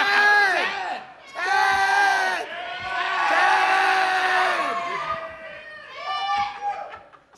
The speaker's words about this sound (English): Stop yelling my name. I look every time.